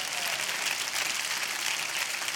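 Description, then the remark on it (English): A church audience claps their hands after good preaching, in dense, steady applause, a continuous wash of overlapping claps at an even loudness with no voices heard. “You can clap your hands.”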